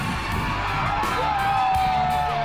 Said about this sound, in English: We would come out here, the lights would be on, the whole stadium would just be completely full and the crowd would be roaring, and it was just a very euphoric, unbelievable high.